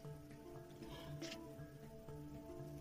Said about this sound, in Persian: از 1 لیمو ترش تازه می‌تونیم استفاده کنیم یا اگر نداشتیم همون آب لیمو. روی گوشتمون میریزیم و دوباره گوشت رو آغشته میکنیم به آب لیمو.